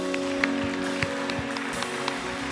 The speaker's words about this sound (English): Let's clap our hands today.